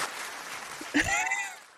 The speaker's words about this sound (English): And I love clapping for myself. It's so good.